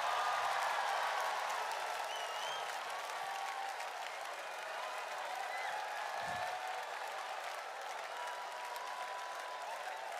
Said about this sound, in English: Shall we clap for wonderful Jesus?